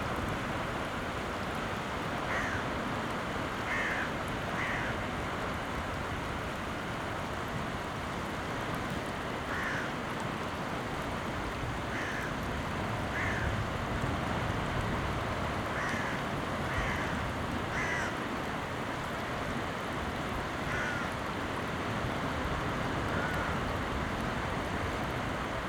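A steady roar of surf and wind on a seaside cliff, with scattered harsh bird calls cutting through now and then. No one speaks.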